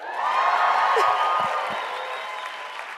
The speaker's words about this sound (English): Y'all can cheer.